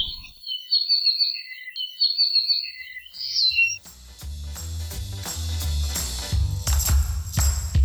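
A native Hawaiian forest bird sings bright, high warbling phrases in repeated bursts for a few seconds, then a full musical passage with steady bass notes swells in and continues to the end.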